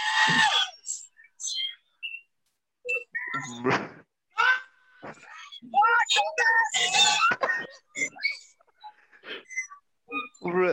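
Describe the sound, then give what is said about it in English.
A movie theater audience erupts in wild, overlapping screams and shouts, loud bursts of excited voices rising and falling in waves with short pauses between them. “It sounds like somebody bombed the fucking theater.”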